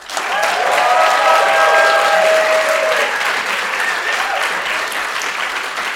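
An audience applauds steadily for several seconds, a dense wash of clapping with a few whistles or cheers riding on top early on, then tapering slightly toward the end.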